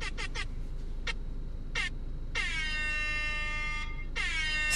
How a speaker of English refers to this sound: That is the shittiest air horn app ever. It almost sounds like a fucking goal horn of whoa!